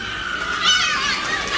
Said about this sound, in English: Screaming, yep. Cheering. Yeah. Oh, I can see people standing up, clapping and applauding now. Standing up, clapping.